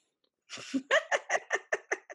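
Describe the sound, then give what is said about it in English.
A dog sneezes in a quick, rhythmic run of about eight short, breathy snorting bursts, each sharp and airy, with no voices over it. “Dog sneeze.”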